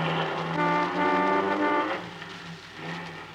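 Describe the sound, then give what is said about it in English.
A car engine runs with a steady, loud droning hum rich in tones, easing off about two-thirds of the way through before rumbling back more softly. “Say, this car really runs nice.”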